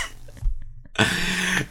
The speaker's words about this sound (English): I'm like, do you need to cough? Are you okay?